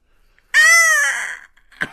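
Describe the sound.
A human voice imitates a bird, letting out one loud, drawn-out, raspy caw, followed after a short pause by a brief, sharp burst.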